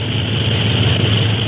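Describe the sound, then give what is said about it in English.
Flying boat airliner engines drone steadily in flight above fog, six hours out of San Francisco, a loud, unbroken low hum with a rough rushing layer above it, holding an even level throughout with no voices. “Gee, I can hardly believe that we're really flying in the Clipper.”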